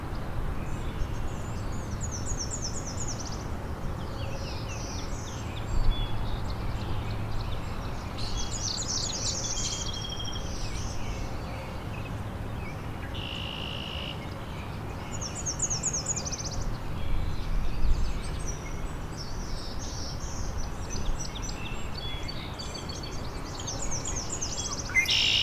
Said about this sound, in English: There's the northern perula, and black-throated blue.